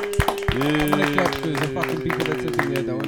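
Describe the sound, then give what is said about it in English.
A steady run of sharp hand claps, fairly loud, repeating about every few tenths of a second over a sustained voiced tone. “Give us a hand clap.”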